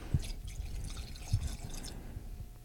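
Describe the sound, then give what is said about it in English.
Bourbon dribbles into a glass, broken by two short, heavier glugs amid a steady trickling splash. No voices are heard. “You know, I don't know how to pour it an exact amount, so I feel like I let it dribble for a little bit and then a big glug and then a few dribbles after.”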